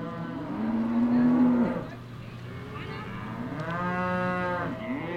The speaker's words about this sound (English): In Fremont, cattle ranchers were dealing with a few young cows that had jumped a fence. The cows were not out in the streets, but the ranchers had to yell and wave and run around to get them in line.